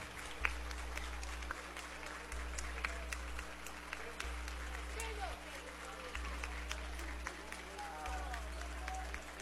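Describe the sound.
South Iron Panther basketball fans clap and cheer in a steady, dense patter of applause with crowd voices mixed in, while a low humming drone pulses on and off underneath.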